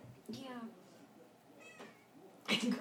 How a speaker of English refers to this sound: Did you just unearth a cat from a pot of soil? The harvest is bountiful this year.